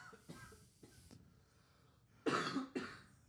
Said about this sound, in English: Oh my God, I'm gonna cough. Hold on.